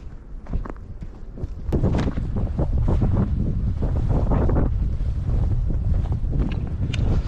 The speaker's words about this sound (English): Lots of wind here today. Lots of wind.